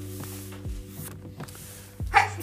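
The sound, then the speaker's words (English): A single short sneeze bursts out near the end, sharp and breathy against a steady low electrical hum, moderately loud, with no talking around it. “Bless you.”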